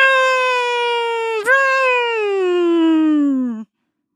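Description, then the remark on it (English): A voice imitates a snowmobile with a loud, steady droning hum that slides slowly lower in pitch for about three and a half seconds, catching briefly midway, then stops abruptly. “This snowmobile.”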